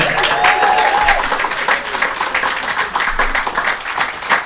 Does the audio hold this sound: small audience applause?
yes